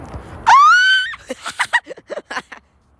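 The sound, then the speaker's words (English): A child on a playground lets out a loud, high-pitched yell that rises and holds for about half a second, then follows with a quick burst of shouted, choppy syllables, unaccompanied. “that's not talking, that's yelling.”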